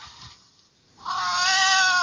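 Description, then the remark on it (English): A person imitates a cat with one drawn-out, nasal meow that starts after a brief pause and holds steady and loud to the end, with no talking around it. “got his cat noises going.”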